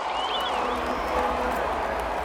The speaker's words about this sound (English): They won't hear it over the cheering.